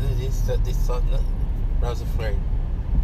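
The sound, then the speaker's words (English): A steady low rumble of street traffic fills the background, with vehicles droning past continuously while faint voices speak intermittently over the noise. “There's not a lot of traffic like this.”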